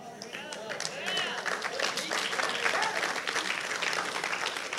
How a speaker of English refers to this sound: For those of you that clap like you were watching Tiger Woods hit a golf ball.